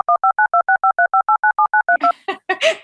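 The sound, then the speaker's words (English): A rapid run of about fourteen clipped telephone keypad tones beeps out in an even rhythm, loud, as someone dials a phone to make a call; then a voice starts talking right as the dialing ends. “Well, I'm going to call you on the phone.”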